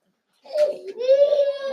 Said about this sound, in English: A baby has been crying. You have been seeing children crying. Let him cry. His cry is in his father's house. Don't let that one bother you.